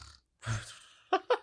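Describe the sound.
A person mimics their small pet dog snoring at night: one rough, snorting breath drawn out, then two or three short, squeaky puffs in quick succession. No other voices.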